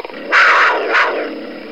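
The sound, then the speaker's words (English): A large dog growls in a deep, rumbling snarl that swells twice over a couple of seconds, with no voices. “Others, a large dog.”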